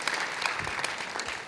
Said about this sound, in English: Great. Come on, let's give Jesus a big clap offering tonight. Fantastic.